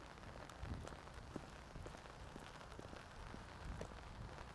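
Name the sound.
rain falling on surfaces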